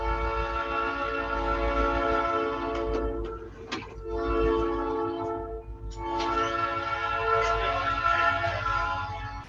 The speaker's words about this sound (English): Oh, son of a bitch. Fuck you, train.